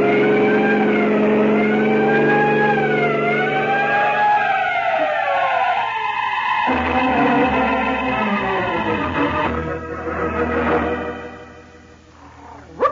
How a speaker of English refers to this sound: there are some trucks ahead, Peter. Sound your siren. Time counts.